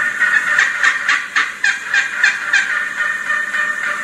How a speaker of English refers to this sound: Gobbler's getting closer and closer. And she's looking down at him and she's talking to him, trying to bring him closer.